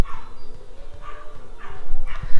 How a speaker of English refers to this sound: do you guys hear those dogs? Here, listen to that.